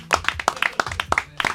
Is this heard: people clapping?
yes